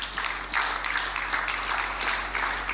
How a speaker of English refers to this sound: Now, can we clap for all?